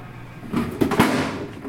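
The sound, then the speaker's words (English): A stuck metal filing cabinet drawer in a barn is jerked several times to force it open, with short scraping bangs and rattles, a few sharp jolts around one forceful tug, no talking. “One of the filing cabinet drawers was stuck and wouldn't open.”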